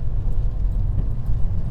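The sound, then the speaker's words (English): Steady low rumble of a car driving along a residential road away from a house's front door, with constant engine and tyre noise and no speech. “As you drive away from Elaine's front door, the houses start to become a bit more substantial.”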